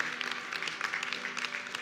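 A crowd at Story City Church claps and cheers for the church turning 3 years old, a dense, steady wash of hand claps with bright scattered bursts, sustained at a moderate level throughout with no speech over it.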